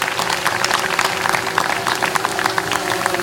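An audience claps steadily for about three seconds for someone who brought a drone back, a dense patter of many hands at an even loudness, with a constant tonal hum running underneath.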